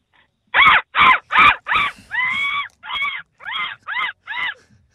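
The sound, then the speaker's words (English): A voice imitates a seagull with a rapid series of loud, harsh, nasal calls: four short squawks, then a longer wailing cry and several more falling calls, piercing. “Now, you think you can do a seagull? Yeah. Well, first of all, just give us your seagull.”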